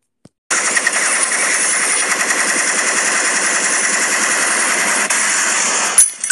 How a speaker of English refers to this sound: Shots fired.